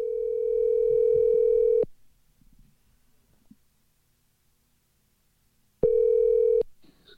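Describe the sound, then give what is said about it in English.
A steady electronic telephone dial tone hums loudly for about two seconds, cuts to near silence with faint handling noises, then briefly sounds again before stopping abruptly. “You can't pick up the phone and go, why?”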